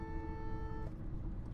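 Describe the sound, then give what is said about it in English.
A single sustained car horn honk, sounded by the driver at somebody, blares for almost a second, loud, then cuts off, leaving the steady low rumble of road noise from inside a moving car. “Anyway, I just honked at somebody. I'm driving.”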